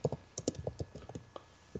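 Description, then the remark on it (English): Rapid, irregular keystrokes clatter on a computer keyboard, a dozen or so sharp clicks in quick succession, moderately loud, with no voices over them. “I thought it would be louder because it's attached to, and you hands. Know. Yeah, like... Because my other keyboard's so loud.”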